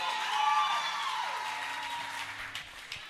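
Sustained applause from a church audience welcoming a reverend to give his inaugural speech, a dense wash of many hands clapping at a steady, fairly loud level that thins slightly toward the end, with a few sharper individual claps standing out.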